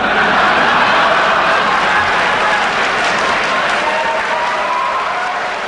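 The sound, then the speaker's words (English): A large presidential debate audience, Mondale among them, bursts into sustained laughter and applause after Reagan's quip about his opponent's youth and inexperience, a dense, loud wash of clapping and crowd voices that holds steady for several seconds before easing slightly at the end. “There was laughter and applause, even from Mondale.”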